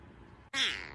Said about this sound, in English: Doesn't that little meow sound like meow